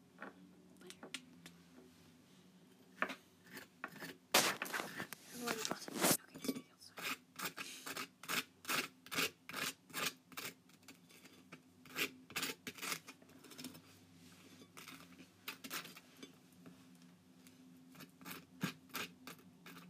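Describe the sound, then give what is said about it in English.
A butter knife scrapes butter across toast in a long series of dry, raspy strokes, irregular and dense at first, then settling into a steady back-and-forth rhythm, with no talking. “we're gonna slice the butter onto the toast”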